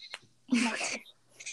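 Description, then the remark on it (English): A short, tinny goat bleat sound effect played back from a computer, one raspy half-second cry standing out after a faint click, with a brief soft noise trailing at the end. “But I have a goat.”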